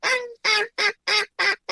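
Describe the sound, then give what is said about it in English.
A hand-held DR85 duck call is blown in a quick series of five loud, raspy quacks, each short and separated by brief gaps, with no talking. “If you can do that, you can call most of the ducks that you need to.”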